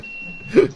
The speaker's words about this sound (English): Someone's reversing the lorry.